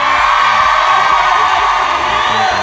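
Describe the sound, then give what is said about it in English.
A large live audience claps and cheers continuously, a dense roar of applause with whoops and shouts rising from the crowd, loud throughout. “Everyone's clapping.”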